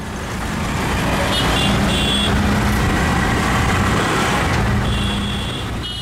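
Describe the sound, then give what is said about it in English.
A dense, steady roar of busy traffic in the crowded streets of New Delhi with rumbling engines, broken by short bursts of high honking horns early on and again near the end, loud throughout. “The driver was screaming at the sea of noise in the crowded streets.”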